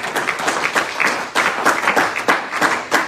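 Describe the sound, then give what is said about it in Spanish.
An audience applauds for the Lord with dense, steady clapping that fills the whole moment, fairly loud, with no one speaking over it. “Denle un mejor aplauso al Señor.”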